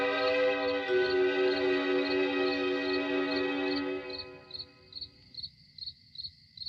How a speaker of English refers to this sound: Why is there crickets in the house, by the way? That is a good question. Speaking of which... No, if you leave the doors open, you should hear crickets.